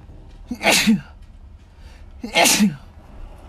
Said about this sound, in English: I have to sneeze.